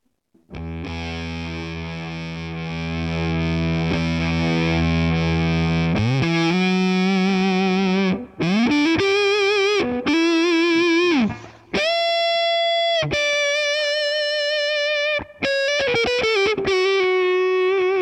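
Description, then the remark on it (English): Electric guitar on the neck pickup played through a Boss Waza-Craft Limited Edition Tone Bender fuzz pedal at 9 volts, attack down, level up: a long sustained fuzzy chord, then a series of thick, buzzing single notes and bends climbing in pitch, loud and saturated throughout. “Boss Waza-Craft Limited Edition TONE BENDER Fuzz pedal Review”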